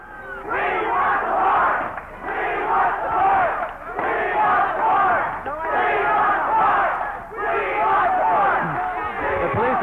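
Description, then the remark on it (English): A large rioting crowd roars and shouts in loud, continuous surges, many voices yelling over one another in waves that swell and dip every couple of seconds, as people throwing rocks in great numbers charge the police, who retreat around the corner. “Charged by people who are throwing rocks in great numbers.”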